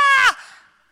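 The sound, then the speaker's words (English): A man's voice imitates a frightened scream: one short, loud, high-pitched cry that drops off abruptly and trails away in a brief echo. “Here are 12 guys out there screaming because they think they see a ghost.”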